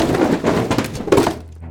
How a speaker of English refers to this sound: It was too much for him, and he let out a blood-curdling scream as he stumbled backwards and slammed his back against the side of the sturdy bookshelf near the piano.